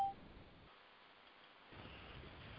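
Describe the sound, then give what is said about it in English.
A single short electronic beep from a mobile phone turning off sounds at the very start, then gives way to a faint, steady background hiss with no voices. “I'm sorry, my phone turned off.”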